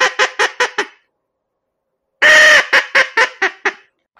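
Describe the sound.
A teal duck call blown as a teal hail call: a quick run of five nasal quacks, a pause, then one long loud blast trailing into about seven faster quacks that fade down in volume.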